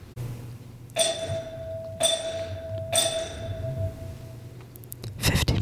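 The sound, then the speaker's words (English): A bell rings three times at steady one-second intervals, each bright, clear strike ringing on and blending into the next, over a low background hum, followed by a short noisy rustle. “Did you guys hear that? Listeners, the bell has”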